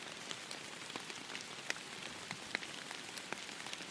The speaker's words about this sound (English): So, with the perpetual rain sleeting down on you,